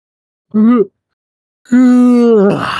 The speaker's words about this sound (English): Oh, sorry. That was me yawning because this episode put me to fucking sleep.